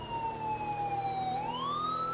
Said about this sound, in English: I'm sure he can hear our siren. It's literally just across the bay there.